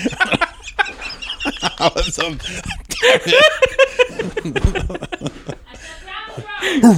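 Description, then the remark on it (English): A person imitates a rooster's crow with stretched, wavering vocal cries, mixed with chuckling and animated voices; a final rising-falling crow-like call ends it. “Gotta crow, like, you got a crow now.”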